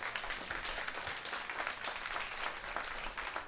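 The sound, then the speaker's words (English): A large church audience applauds a guest speaker steadily, a dense wash of many hands clapping at once that stays loud and even throughout, with no voices standing out. “Can we give Kyle one more round of applause?”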